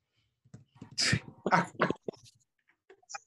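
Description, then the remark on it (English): A single forceful sneeze bursts out with a sharp airy explosion, followed by a couple of short breathy aftershocks and quiet sniffles. “God bless you.”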